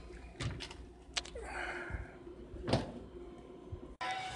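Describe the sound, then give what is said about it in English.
Sharp metallic clicks and rattles of an old combination lock being turned and handled, with a few louder clacks and a steady hum underneath, no voices. “Yeah, I got these old school combination locks and shit like we in high school.”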